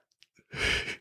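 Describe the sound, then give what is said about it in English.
A person yawns, a brief, breathy exhale rising out of near-silence after a few faint mouth clicks, loud and airy for about half a second. “I thought you wanted to talk, so I just had to get a yawn out.”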